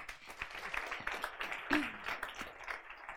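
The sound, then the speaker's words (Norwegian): An audience applauds two Norwegian members of parliament, Jette Christensen and Liv Signe Navarsete, steadily, a dense patter of many hands clapping at a moderate level, with a brief higher-pitched cheer or whoop rising out of it partway through. “Gi dem en applaus.”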